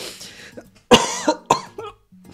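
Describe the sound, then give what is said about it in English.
A few sharp, abrupt hiccups jolt out in quick succession, each a sudden breathy gulp that cuts off fast, with short quiet gaps between them and no talking. “I have hiccups.”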